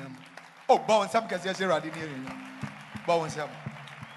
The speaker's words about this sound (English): Stand to your feet and clap your hands for the Lord.